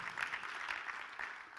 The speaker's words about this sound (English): Come on, percussion. Come on, clap your hands right now. Come on, you got percussion instruments.